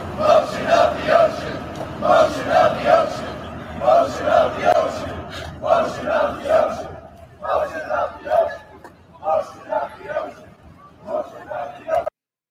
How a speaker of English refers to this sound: Activists were heard chanting, quote, motion of the ocean.